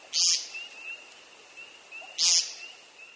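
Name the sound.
bird call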